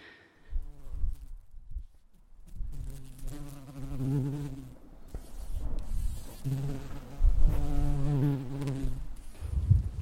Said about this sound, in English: And then all these beautiful yellow flowers came out and they're these giant yellow flower bushes now that are absolutely covered in bumblebees. See if I can find one buzzing around.